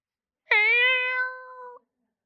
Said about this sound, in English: When I'm sitting in my home without all of my lovely children and there is no cries of distress, I'll even sit there and every now and then you'll hear a sound and you go, nope, it's a cat.